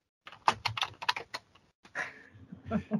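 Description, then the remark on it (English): A quick flurry of clicky keystrokes on a computer keyboard as someone looks up a word's meaning on Google, fairly soft, followed by a short pause and another scattered run of typing. “I'm typing quietly here.”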